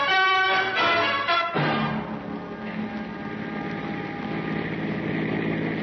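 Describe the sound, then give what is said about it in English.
A steady, droning car engine hum runs for several seconds as the car is driven, following a brief burst of bright tonal sound at the start. The engine noise stays even and moderately loud, with no voices. “You and Murray, put them in the car, Sam, and we'll all go for a ride.”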